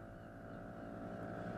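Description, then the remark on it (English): A steady, droning outboard motor fitted to a curragh hums, its low engine rumble constant and unbroken with a faint whine above, as the small boat moves over water on the way to Inishturk. “The Curragh has an outboard motor fitted, so with little more than a cursory view of Omi Island to the north and Turbot to the south, you're already looking at the rocky coast and high central ridge of Turk”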